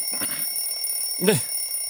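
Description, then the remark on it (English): An alarm clock rings with a steady, high electronic tone that holds unbroken throughout, with a brief vocal sound breaking in partway through. “Alarm activated.”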